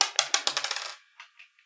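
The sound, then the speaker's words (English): Dice clatter across a hard tabletop in a quick burst of bouncing clicks that speed up and soften, then a few faint taps as they settle, landing on a 3. No voices. “Is that a 2 on the dice?”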